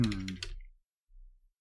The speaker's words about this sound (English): So I'm going to bring this up here. Everyone loves the sound of me typing.